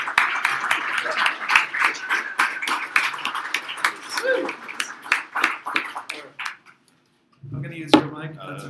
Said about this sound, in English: please clap for my mom.